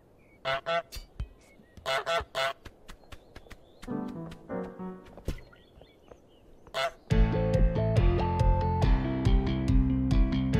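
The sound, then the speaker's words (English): A cartoonish goose from the video game Untitled Goose Game honks repeatedly in short, sharp, nasal bursts, loud, before bright, upbeat music swells in and plays on its own. “Untitled Goose Game (HONK!)”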